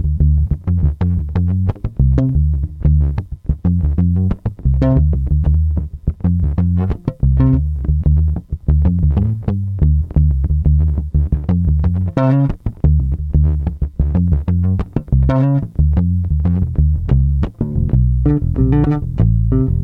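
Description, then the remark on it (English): A bass guitar plays alone, loud, with a steady stream of plucked notes played across different areas of the neck that shift in pitch and tone, slightly gritty and effected, with no voices. “Although, I don't know, man, you start to explore it and you get those kind of really nice tones, like get in different areas of the neck.”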